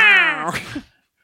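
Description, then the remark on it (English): A single loud "meow" done by a human voice imitating the cat Sinar, starting high and sliding downward before trailing off into a breathy, raspy finish, with nothing else around it. “Sinar sitting in Tarkin's lap. Yeah, he's Mad Cat.”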